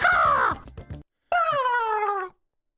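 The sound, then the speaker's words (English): A turkey gobbles twice in a studio, loud: a harsh call that drops in pitch and breaks into a quick rattle, then a brief gap and a second, longer wavering call. “There's a turkey in the studio.”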